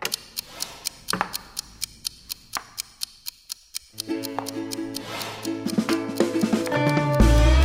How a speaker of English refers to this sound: You're white, so you go first. I'll start the clock.